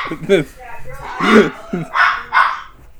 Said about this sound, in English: Oh my god. Oh, I thought that was her laughing really hard. It's a small dog.